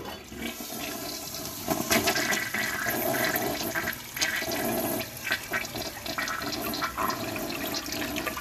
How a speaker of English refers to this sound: You know, and then because it's a bathroom session, we're gonna flush the toilet because it's funny.